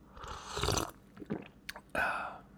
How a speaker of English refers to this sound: I really don't have anything to say right now, so I'm just going to take another sip of my coffee, and you guys can listen to that.